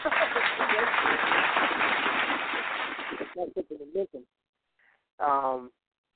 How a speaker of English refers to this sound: So let me throw some hand claps on it. What are hand claps at? See, I don't know why this thing is like that. Okay, here we go.